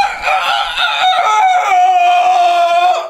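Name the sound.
rooster crowing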